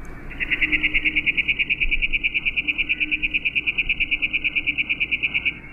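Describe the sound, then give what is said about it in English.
A chipping sparrow's trill played at half speed: a long, even train of rapid chips, roughly eight per second, steady in pitch and loudness for over five seconds, with no talking. “we'll listen to those trilling birds again. First at regular speed, then at slow motion, almost half speed.”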